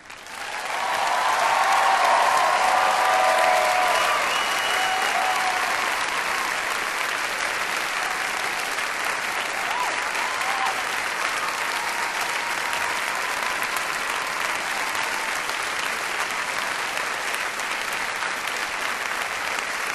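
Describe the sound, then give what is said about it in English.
At a graduation ceremony, a large crowd of graduates applauds the standing faculty, a dense wash of clapping that swells loud in the first few seconds and then holds at an even level for the rest, with faint cheers mixed in early. “And now that you're comfortable, will the faculty please rise to receive the applause of the graduates?”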